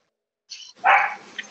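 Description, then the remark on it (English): A dog barks, a short high yip followed by a louder, sustained bark that trails off into a few softer yelps, as the speaker's dogs come in. “Hang on, my dogs are about to come in.”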